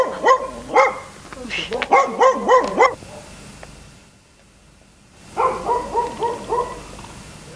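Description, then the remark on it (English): A dog barks in a quick, rhythmic series of sharp, loud yelps, falls silent for about two seconds, then starts up again with another run of repeated barks. “What you barking at?”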